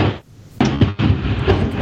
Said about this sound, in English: Sorry, there's a tremendous thunderstorm. Yeah, I don't know if y'all heard that, but that was perfect IMAX.